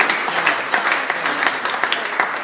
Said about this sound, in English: Come on, let's clap the Lord. Praise you, Lord. Praise you, Lord.